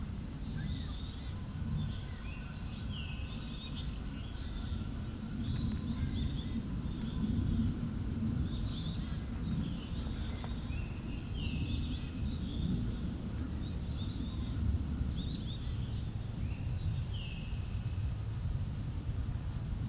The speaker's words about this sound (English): A little closer that time. Some black-capped chickadees sing with their whistles.